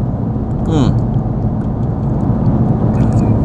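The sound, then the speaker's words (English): A single short gulp as someone swallows a sip of a drink with the microphone right next to their throat, recorded on a phone; a quick wet throat sound early on, followed by a steady low rumble of background noise. “The microphone's right next to my throat, so you probably heard some gulpage right now.”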